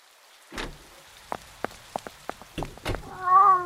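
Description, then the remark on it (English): A few scattered taps and knocks, then a clear, drawn-out cat meow rises near the end, moderately loud, with no one speaking; one of many cats at Norma's Hideaway Motel. “Looks like Norma has a lot of cats.”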